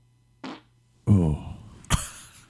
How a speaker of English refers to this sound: Who farts like that? Disgusting. Obviously, we know that was you.